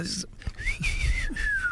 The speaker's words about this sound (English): Was it whistly? It was... I think it is. Yeah, it's whistly, isn't it? I'm not a great whistler. No, you know, it's too breathy.